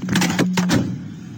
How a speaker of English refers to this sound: Well, it was that kind of day for Canada's High Commissioner to India. That's him slamming the door, apparently, on a reporter trying to ask him questions after he was hauled into the Ministry of Foreign Affairs today in New Delhi.